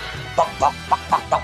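Five short, scratchy clucking bursts in an uneven rhythm, like a robotic chicken, sounding close and moderately loud with no talking.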